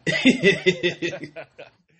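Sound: throat clearing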